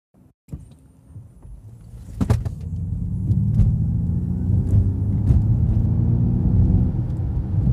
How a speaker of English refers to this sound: So, I don't know if you guys could hear this noise, this engine noise as I accelerated. Now that is a setting that I have on. It's called propulsion sound, which is very, very interesting.